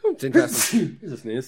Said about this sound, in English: It's a sneeze. They're so sneezy. So sneezy. Is that our first sneeze on the podcast? I don't know. Probably. Enjoy that, folks. Enjoy that. We won't cut that out.